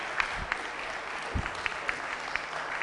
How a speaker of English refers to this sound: Stand to your feet, our time is up. All right, you don't have to clap. You don't have to clap.